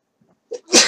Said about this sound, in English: And sorry, I have to sneeze. Excuse me. one more.